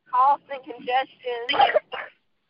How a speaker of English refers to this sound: You're coughing?